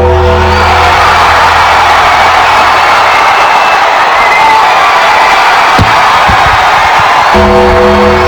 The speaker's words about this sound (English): And you hear in the YouTube video, the crowd is fucking going wild. Yeah. They love Undy.